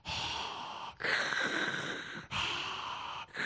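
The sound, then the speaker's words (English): A voice imitates heavy mouth breathing: four loud, airy, raspy breaths in a steady rhythm, alternating in and out with brief pauses between, no words spoken. “And she's breathing out of her mouth, just like her dad.”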